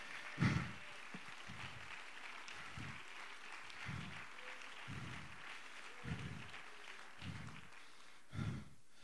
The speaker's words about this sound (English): Oh, somebody clap your hands unto the Lord if you're with me today.